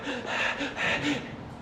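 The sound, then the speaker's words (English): A voice imitates quick, anxious panting: a breathy series of short rapid huffs in a steady rhythm, lasting under two seconds with no words spoken. “And their hearts are starting to beat. And they're panting.”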